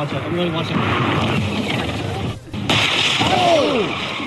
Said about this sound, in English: Oh! The car scraping. Oh, get the car, get the car. Oh, shoot. Oh, it wasn't even his car. It was a rented Tesla.